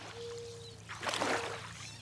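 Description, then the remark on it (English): River water flows and splashes, swelling into a louder rushing surge midway before settling, over a steady low mechanical hum and a faint thin tone; no voices. “Soak in the sounds of a river with this composer’s sound maps”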